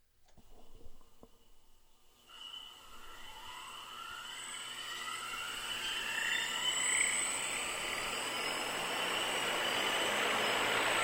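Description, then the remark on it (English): Helicopter rotor blades in a 25-foot diameter vacuum tank at JPL, evacuated and filled with a CO2 atmosphere, begin to whir after a short quiet stretch, a steady rushing hum with tones that climb in pitch as the blades spin up and grow louder. “Hear the whir of the blades.”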